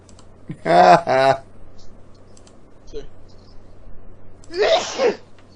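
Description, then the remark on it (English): Two loud sneezes a few seconds apart: the first a voiced, throaty burst, the second a sharper, breathier spray, with faint clicks in the quiet gap between them. “Alright, then I'm gonna keep fucking sneezing during this.”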